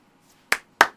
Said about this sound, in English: Oh, now I get the sarcastic clap.